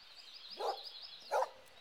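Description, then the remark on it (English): A dog named Toby barks twice at a barn at a family home with horses, two short, sharp woofs about half a second apart, fairly soft, over a steady high-pitched background drone. “Come here, you silly dog!”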